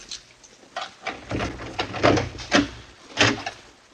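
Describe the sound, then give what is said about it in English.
A heavy locked cellar door at the end of dark halls is unlocked and pulled open: an irregular series of clunks, rattles and scrapes over a few seconds, with no one speaking. “We took the stairs down to one of the cellars, walked along some dark halls, and then stopped in front of a locked door.”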